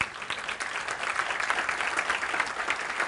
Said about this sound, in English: The return of Jesus, listen, and perhaps you will agree by round of applause.